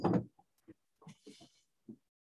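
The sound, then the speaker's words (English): A door is opened to let in a cat that was scratching at it: a loud clunk of the latch, then a few soft knocks and a brief airy creak, followed by one last low thump amid quiet. “And she's busy fucking with me because she know now I have to let her in.”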